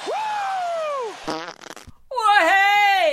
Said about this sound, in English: Oh, the old fart drop, baby.